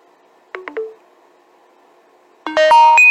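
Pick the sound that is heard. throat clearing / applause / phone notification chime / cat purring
phone notification chime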